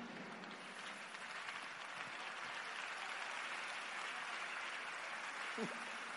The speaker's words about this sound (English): Oh, increase that clap offering